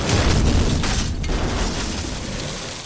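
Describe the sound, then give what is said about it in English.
A huge explosion as a shot from a gunboat hits a ship's powder magazine, a loud roaring blast of deep rumble and crackling debris that slowly fades over a few seconds. No voices. “A lucky shot from the gunboat hit the magazine at the launcher and off it went bang.”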